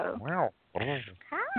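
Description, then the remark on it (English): A male phone-in caller imitates a cat's meow, making three drawn-out, pitch-bending mews in quick succession, fairly loud with a thin, telephone-like tone. “Did he really meow at me?”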